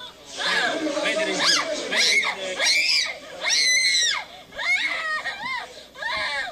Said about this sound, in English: You don't need to speak Arabic to understand what's going on in these videos. As a mother, that scream, that pain radiates through my entire body, my bones, my soul.